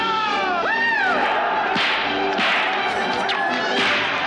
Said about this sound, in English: They call him the Gay Blade, and he's whipping the shit out of people. He has a whip.